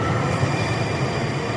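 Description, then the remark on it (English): A train arriving at a station in Charlotte, North Carolina rumbles steadily along the tracks, a dense low roar with faint high hiss, continuous and unbroken with no voices. “Train approaching. Please stand clear at that location.”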